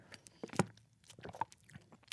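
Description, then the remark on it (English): Someone chewing dry sausage, with a run of quiet, crackly bites and one louder crunchy chomp near the start, the chewing irregular and fairly soft, with no talking. “That's me eating sausage. It sounds so dry.”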